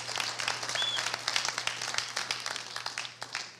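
An audience applauds, a steady wash of many hands clapping for several seconds, with a low steady hum beneath and no voices.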